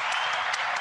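round of applause

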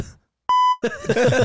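censor bleep tone

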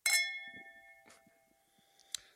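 wine glasses clinking

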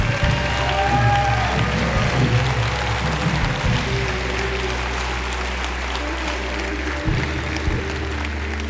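audience hand clapping

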